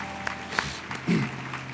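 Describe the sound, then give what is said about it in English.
An audience claps their hands to the Lord Jesus in scattered, uneven bursts of applause, sharp claps over a low background murmur, with a brief voice-like hum midway. “Let's clap our hands to our Lord Jesus.”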